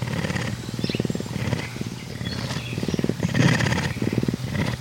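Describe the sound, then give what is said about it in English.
A female Florida panther, born and raised under human care, purrs loudly and steadily while pacing up and down, a deep rumbling vibration that pulses in rhythmic waves for several seconds with no one speaking. “is pacing up and down, purring her head off.”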